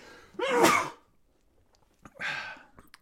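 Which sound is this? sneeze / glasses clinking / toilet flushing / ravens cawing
sneeze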